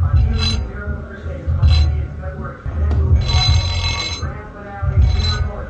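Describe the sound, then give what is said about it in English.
Collected glasses on a portable bar rattle and clink together in repeated bright, jittery bursts, shaken by music vibrating through the floor, its heavy low thumping bass running steadily underneath throughout. “You know, I have a portable bar because I like to collect pretty glasses. And that's just how the music is vibrating through the floor.”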